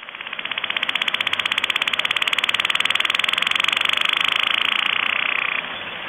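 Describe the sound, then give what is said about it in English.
A whale's thump train from the Atlantic: a rapid, steady series of pulses running for several seconds with a buzzing, mid-to-high pitched texture, loud and unbroken before stopping abruptly. No voices. “They call those thump trains. It's just a fast series of pulses.”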